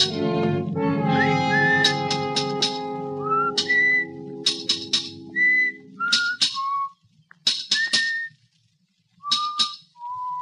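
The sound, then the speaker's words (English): A cheery tune is whistled in a monumental mason's yard while sharp metallic taps ring out in irregular bursts as hammer blows drive steel into stone, the strikes coming in quick pairs and clusters. “From the yard itself came a cheery whistle, the noise of hammer blows, and the cold sound of steel meeting stone.”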